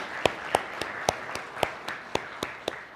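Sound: audience round of applause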